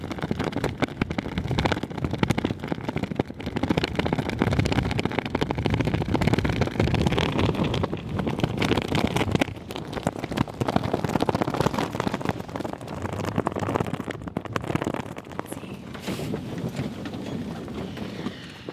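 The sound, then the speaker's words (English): Strong, cold wind buffets the microphone in loud, continuous gusts as someone heads to a flag, which flaps and snaps irregularly. No one speaks. “And I am headed to a flag, which is quite a bit windier and flappier than it was the other day.”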